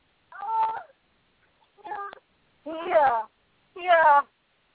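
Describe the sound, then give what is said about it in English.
A cat meows four times during a car ride, in separate, drawn-out calls with clear harmonic pitch, the last two louder and more insistent, with short pauses between them and no talking over them. “She says she is so ready for this car ride to be over.”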